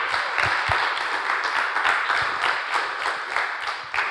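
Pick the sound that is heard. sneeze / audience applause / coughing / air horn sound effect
audience applause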